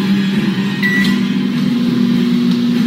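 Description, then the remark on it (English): A microwave oven called Magnetron switches itself on with its door closed and runs with a steady, fairly loud electrical hum and a low droning tone, with a brief faint beep-like tone near the start and no voices. “Magnetron just stirred himself on, with no hesitation.”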